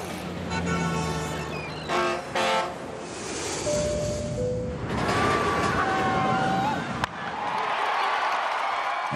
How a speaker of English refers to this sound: That was a skyscraper, car, ship, plane, roller coaster, and a ballpark.